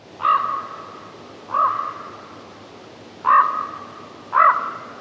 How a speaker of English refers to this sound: Jay, please insert the noise of a raven right now.